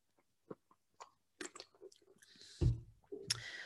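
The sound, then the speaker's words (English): Someone takes a sip of water: scattered small wet mouth clicks, then a louder swallow or gulp, followed by a short breathy exhale. No one speaks. “Gonna take a drink of water.”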